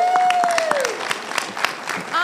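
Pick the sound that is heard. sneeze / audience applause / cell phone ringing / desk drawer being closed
audience applause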